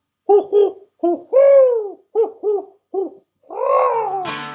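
A clear owl hooting in a rhythmic series as the owl circles and comes down: quick paired hoots alternating with longer, drawn-out wavering calls, ending in a brief noisy burst. No one speaks.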